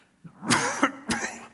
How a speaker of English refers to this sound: I'm sorry, I'm coughing a little bit here.